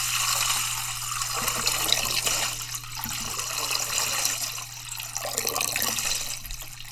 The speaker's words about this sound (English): What did you hear? Yes, that's right. Water. The sound of water.